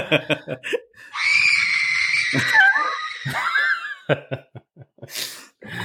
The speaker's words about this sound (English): So there she is. That poor girl's been, her throat's gonna hurt in the morning. All that screaming.